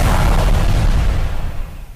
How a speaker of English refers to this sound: Explosion.